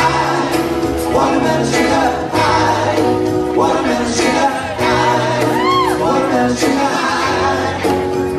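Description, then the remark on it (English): A crowd at a small club-type gig cheering and whooping over loud live music, shouts rising above a steady band and bass that keep going the whole time without a break. “It looks like a small club type gig and that crowd's loving it.”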